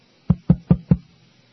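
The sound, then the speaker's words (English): Four quick, evenly spaced knocks on a microphone, each a loud, boomy thump, with no one speaking. “Knock on this counter. Knock on whatever this is. Knock on microphone.”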